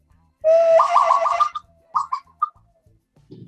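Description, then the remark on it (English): A person whistles a bird-like call with their mouth: a rising note into a warbling trill for about a second, then a few short chirps, loud, with no talking. “I have the bird call.”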